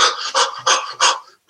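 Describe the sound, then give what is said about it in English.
Rapid, heavy panting from a person running on the spot and breathing as hard as possible: four quick, loud breathy gasps in a steady rhythm, with no talking. “I don't know if people are listening or watching this, but picture me running down on the spot and breathing as much as possible.”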